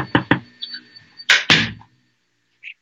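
A door is pushed shut: a couple of light knocks and rattles, then two loud, sharp thuds close together as it latches, followed by a brief faint click.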